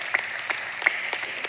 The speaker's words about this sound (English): Now, these folks are clapping because obviously they understand that.